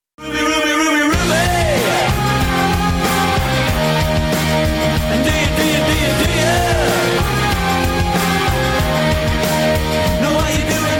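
A loud rock song plays after a brief opening second, with steady pounding drums, thick sustained guitar chords and a melodic vocal line, full and unbroken to the end.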